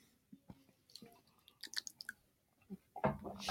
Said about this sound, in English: Now you're making me want to try it again. Yeah. A little sippity sip.